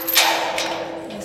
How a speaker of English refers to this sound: Right, are we going to go in? Yeah, let's go in. We got to get this padlock off.